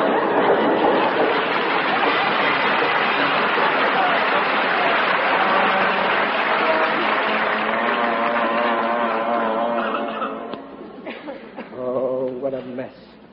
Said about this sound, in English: Holy smoke! The house is moving. It's an earthquake. Oh, it's a train!